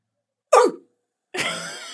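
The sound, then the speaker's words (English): A person imitates an angry Rottweiler barking with two loud, gruff vocal bursts. The first is short and drops in pitch; after a brief silence, the second is a longer, rasping growl. “What kind of dog? Rottweiler. And he's angry because he hasn't had lunch.”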